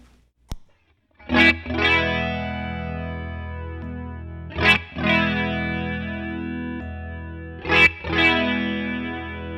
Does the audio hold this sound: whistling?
no